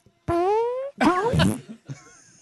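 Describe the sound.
A voice blows a wet, buzzing raspberry with the lips, a loud sputtering mouth-fart imitation in two or three bursts, the middle one longest and noisiest, trailing into a short final sputter.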